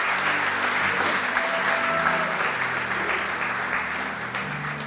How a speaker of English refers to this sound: You guys can have a seat. Let's cheer for our panel. Thank you, thank you, thank you.